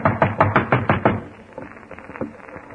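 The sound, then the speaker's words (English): A quick series of about seven loud knocks on a wooden door, followed by a softer, fainter round of knocking trailing off. “Come in. The door's unlocked.”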